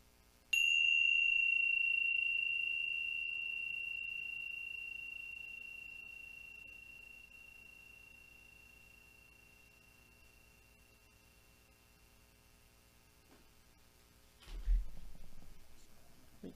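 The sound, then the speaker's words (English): A single bell is struck once and its clear, ringing tone sustains and slowly fades over many seconds, followed by a soft rustle near the end. “So I'd like to ring the bells again, if I may.”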